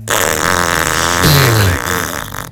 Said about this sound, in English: There's a lot of shame and anger in those farts.